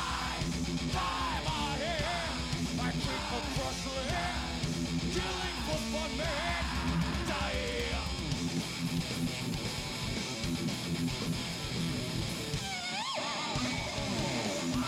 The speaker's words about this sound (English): Bass solo! Take 15!